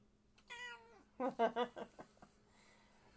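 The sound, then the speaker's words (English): A male cat lets out one drawn-out meow, then a quick run of four or five loud, harsh, agitated, angry yowls, with no voices. “we start off where we left off with the tiger's meow”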